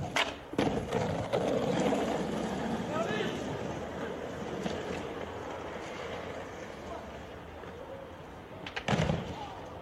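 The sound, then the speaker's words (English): A skateboard rolls fast downhill on a narrow sidewalk with a steady, gritty wheel rumble that stays loud throughout, broken by sharper clacks near the start and again just before the end, with indistinct voices underneath. “So this dude bombs a hill on a narrow sidewalk on a skateboard, and then he gets hit by a car right as he's like, yes!”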